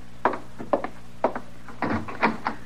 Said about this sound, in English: No, sir, Mr. Dillon, that ain't the wind. Is it somebody working the door that way? We'll see who it is.